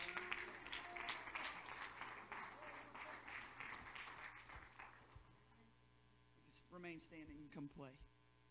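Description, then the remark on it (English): A church audience claps hands together to give the Lord praise, in a dense, steady burst of applause lasting several seconds over a low electrical hum, then fades as a single voice begins speaking. “Come on, would you clap your hands and just give the Lord some praise in this house?”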